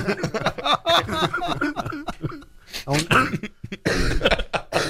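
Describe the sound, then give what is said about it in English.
A man talks while a few short coughs and a rough throat clearing break in, followed by a burst of noisy rustling of papers being thrown up. “I don't have a cough button. You can't make me cough.”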